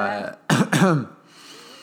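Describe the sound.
A short throaty cough or throat-clearing sound, close and fairly loud, made of two quick bursts after a brief voiced lead-in, then fading into quiet room noise.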